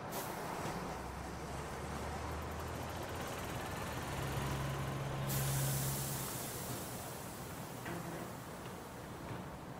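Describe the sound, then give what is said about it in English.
A Green Line bus pulls to a stop with a loud, sustained hiss of air brakes over a low engine rumble. The hiss brightens sharply midway through, and no one speaks. “Margot stepping off the Green Line bus and her hair is blowing in the wind”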